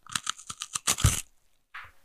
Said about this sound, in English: By the sounds of bones crunching and an unsettling squishing.